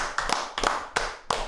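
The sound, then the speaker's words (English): A few sharp hand claps in an uneven, unhurried rhythm as the hosts give themselves a brief round of applause, with no talking. “Fucking let's give ourselves a round of applause.”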